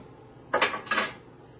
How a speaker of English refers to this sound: Let me get a fork.